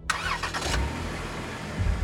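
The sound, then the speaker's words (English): A truck engine cranks with a brief whirring starter, then catches and settles into a steady, low idling rumble, the truck left running in a Kmart parking lot in Fairhaven, Massachusetts as it slowly fills with carbon monoxide. “He sat in his truck as it slowly filled with carbon monoxide.”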